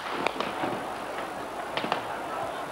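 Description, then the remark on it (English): Sharp cracks and pops of gunfire from troops ring out irregularly and unremittingly across the center of Beijing, China, near Tiananmen Square, at night, over a steady wash of city noise, with a few louder reports standing out in quick succession. “The noise of gunfire rose from all over the center of Peking. It was unremitting.”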